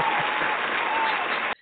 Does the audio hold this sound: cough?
no